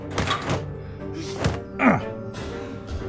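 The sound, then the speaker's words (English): A person is pushed into the lower row of metal lockers and punched and kicked hard: heavy thuds mixed with a ringing metallic clang and rattle, blows landing in quick, uneven succession. “Tanaka furiously pushed him into the lower row of lockers and started punching and kicking him hard.”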